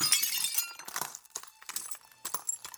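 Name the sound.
window glass breaking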